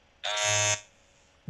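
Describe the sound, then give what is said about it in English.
Someone vocally imitates a basketball shot clock buzzer: one loud, harsh, sustained buzz lasting about half a second, then a short quiet pause before another sound begins at the very end. “I was trying to do like a shot clock buzzer in the NBA.”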